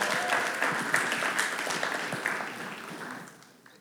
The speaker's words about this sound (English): We can give her a round of applause, you guys.